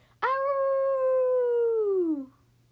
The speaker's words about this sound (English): Then … and Wolfie actually howl together.